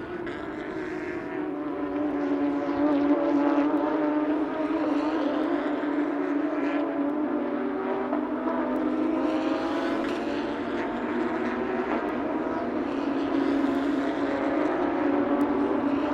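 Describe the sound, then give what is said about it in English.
A loud, steady racing-engine roar drones on throughout, with a sustained harmonic whine that rises and falls slightly as Porsche Carrera Cup North America cars run in a 2023 practice session at Sebring under overcast skies, continuous, with no talking. “Porsche Carrera Cup North America 2023: Sebring practice 2”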